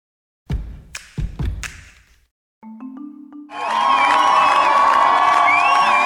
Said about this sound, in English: Hundreds of Iranians gathered at the airport in Tehran to greet and cheer for rock climber Elnaz Rakabi early this morning.